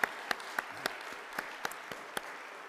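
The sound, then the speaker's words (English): An audience applauds a team in appreciation of its work, a steady, mid-level patter, with a handful of sharper, louder claps popping out at irregular moments above the general clapping. “So let's give a clap offering to this entire team and appreciate the work that they are doing.”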